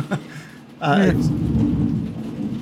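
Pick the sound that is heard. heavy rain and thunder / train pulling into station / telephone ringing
heavy rain and thunder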